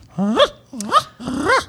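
A show dog named Philip de Rothschild Engelbert Froehark Dunstan Warbler III, being trained to walk for a dog show, lets out three loud growly barks in quick succession, each a drawn-out rising yowl with a short pause between them.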